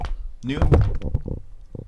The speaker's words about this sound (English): Almost knocked over the microphone.